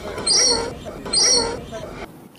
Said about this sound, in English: Okay, that's a little welcome note. One of the Moluccan cockatoos left for you ahead of the opening of Bird Paradise.